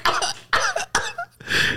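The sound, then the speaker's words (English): A voice imitates a fit of coughing, as if mourners at a funeral service were coughing on cremation ashes tossed in the air: four rough, hacking coughs in quick succession, fairly loud, with no talking. “Like, yo, funeral service, niggas be coughing up.”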